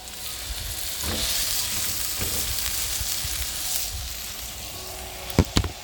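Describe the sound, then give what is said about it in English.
Steady sizzling of corned beef hash, meat and potatoes seasoned with salt and pepper, frying in a pan. A broad crackling hiss runs throughout, with a couple of sharp scraping clicks near the end as the food is stirred. “Like, you can hear that sizzle.”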